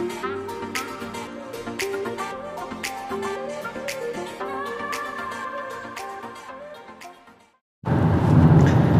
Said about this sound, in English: So here we are, I'm just going to set the scene. We're sitting in a car heading to the Safety Forum in Auckland, and I've accosted our guest today on the way down.